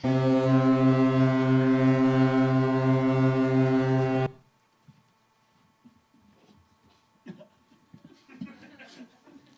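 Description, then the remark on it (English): A loud, deep ship's horn blasts steadily for about four seconds as the vessel, the HS Indulgence, docks in Irish waters, then cuts off abruptly, leaving faint background noise and a few soft voices murmuring. “Yes, we've docked in Irish waters.”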